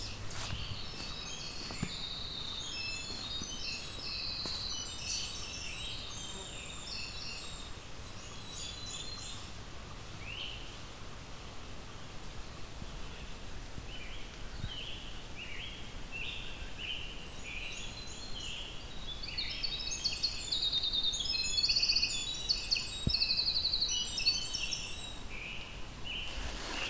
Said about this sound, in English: The winter wren has a very extensive song, goes on for 9-10 seconds. One of the few birds that does that.